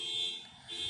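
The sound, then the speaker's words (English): A shrill, high-pitched electronic alarm tone sounds steadily, dipping briefly before returning, like a car alarm beeping over faint background noise; it has been beeping since the morning. “Beep from morning.”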